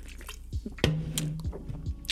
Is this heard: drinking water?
yes